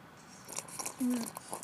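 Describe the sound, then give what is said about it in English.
Moist chewing of gummy chocolate, soft and sticky, with irregular squishy smacks and clicks, and a brief low murmur partway through. “This chocolate is so gummy.”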